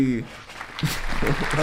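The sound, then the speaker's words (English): An audience claps in a steady, crowd-wide wash of applause, starting after a brief voice and continuing with people talking loudly over it. “Audience, give him a round of applause.”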